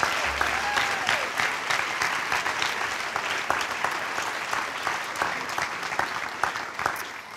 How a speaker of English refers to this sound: Let's give another round of applause for all those students.